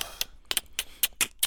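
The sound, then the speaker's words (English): A quick series of about seven sharp, dry clicks made with the tongue and mouth, fairly crisp, coming in an uneven rhythm with no talking. “And every time Richard got pissed off enough to kill, he'd make this little clicking noise with his mouth.”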